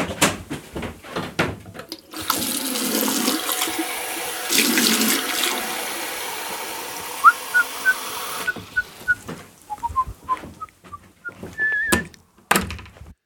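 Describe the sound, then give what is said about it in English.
A tap gushes steadily for about six seconds with a surge partway through, filling a glass with drinking water, followed by a few light clinks and thunks. “I didn't get a drink of water.”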